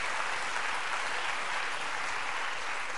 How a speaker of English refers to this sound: Let's clap our hands to the Lord and give Him praise today.